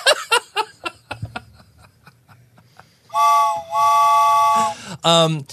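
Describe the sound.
Brief laughter gives way to a person loudly imitating a steam train whistle: two long, wavering whistle blasts, then a short rising hoot.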